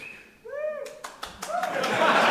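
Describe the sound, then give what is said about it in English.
A short voiced whoop rises from the crowd, then scattered claps quickly swell into loud, dense audience applause that keeps building to the end. “… started that applause.”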